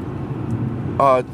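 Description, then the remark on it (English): Steady low rumble of a car interior as the car is driven in traffic on the way to work, with a brief harmonic tone near the end like a horn or brief voice rising over the engine hum. “I'm driving to my job.”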